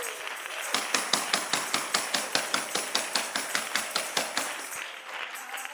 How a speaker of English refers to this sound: Come on, let's clap our hands to the Lord together.